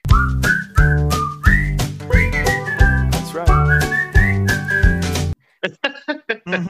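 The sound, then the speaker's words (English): A bright whistled melody rides over a bouncy song with steady beat and bass for about five seconds, then the music cuts off and a person briefly speaks. “Whistle in there. So it's kind of like you're just walking.”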